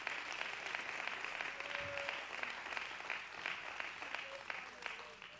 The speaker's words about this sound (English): Would you clap your hands to the Lord and give Him praise?